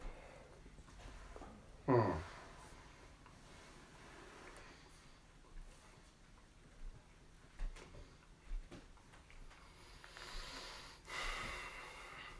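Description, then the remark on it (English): Heavy breathing, with a sharp snort-like burst early on, quieter breaths in between, and a long, airy exhale near the end. No one speaks. “A lot of heavy breathing.”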